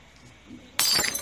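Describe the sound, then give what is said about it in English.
In a Comfort Inn hotel, glass is deliberately broken: after a brief quiet moment, a loud crash, then bright shattering and tinkling shards spill onto the floor through the rest of the moment. “You're getting glass all over me.”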